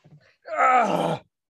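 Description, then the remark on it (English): A person vocally imitates the character Noggard screaming: one strained, groaning cry of under a second, loud and harmonically rich, preceded by a few faint low murmurs. “Can I do Noggard screaming?”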